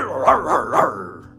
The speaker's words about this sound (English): My dog up in here.